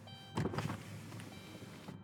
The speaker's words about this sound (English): And then I'm going to roll my window down. Hang on. All right.